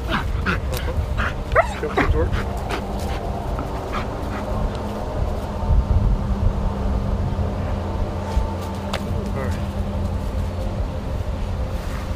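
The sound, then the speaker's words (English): A detection dog alerting on something lets out a burst of sharp barks mixed with high whimpering whines, then barks a few more times sporadically, all over a steady low rumble of machinery. “The dog handler tells me she's alerted on something.”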